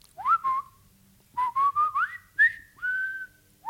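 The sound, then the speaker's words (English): Someone whistles the march from Bridge Over the River Kwai, a bouncy run of clear, high, sliding notes in short rhythmic phrases with brief pauses between them. No one speaks. “Patreon, legal defense fund to let me whistle Bridge Over the River Kwai on the show as much as I want to.”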